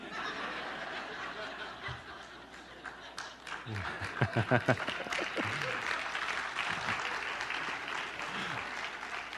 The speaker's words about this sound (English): He's been waiting for a long time for applause from that sermon.